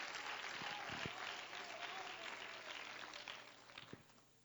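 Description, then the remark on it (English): An audience claps their hands in praise to God during a sermon, a dense, continuous burst of applause that gradually fades over a few seconds, with no voices standing out. “Come on, clap your hands and let's give praise to him right now.”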